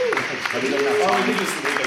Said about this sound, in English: That's where we'll hit the applause button.